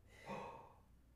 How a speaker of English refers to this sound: Okay, and I heard like, you gasp and I was like, what?